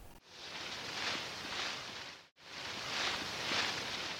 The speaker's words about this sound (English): It had a painted blue handle with cool designs on it and golden straw or reeds or something coming out from the sides. David picked it up and looked at it. He turned it around. When he turned it, it made a really soft, really pleasant rustling sound.